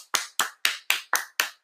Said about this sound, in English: Two claps this time. Two claps this time. Crisscross. Crisscross. Everybody clap your hands.